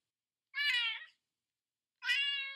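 Two clear cat meows, each about half a second long, separated by a short silence. They are loud, with a bright, harmonic tone and no other sounds.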